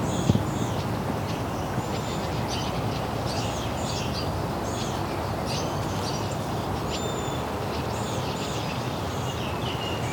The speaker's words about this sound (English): There we go, Wilson's Warbler.